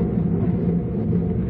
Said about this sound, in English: Still thundering.